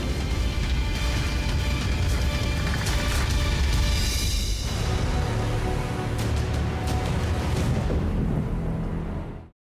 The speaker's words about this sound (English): April 27th, 2014, Interstate 40, Mayflower, Arkansas. Yep, we're in it right now. We're in the tornado.